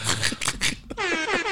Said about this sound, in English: You get one for that. Thank you. You get an air horn.